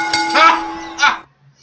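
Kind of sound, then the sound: signal or alarm, bell ringing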